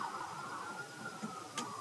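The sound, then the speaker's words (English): A steady, high siren wail holds a nearly even pitch throughout, sounding muffled, as emergency vehicle sirens pass outside, with faint background noise and no talking. “I tell you, the song that saved me while I'm trying to talk over the damn sirens, as my relatives used to say, sirens.”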